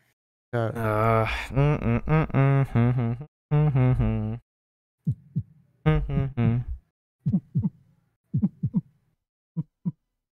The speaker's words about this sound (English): My heart beating, huh?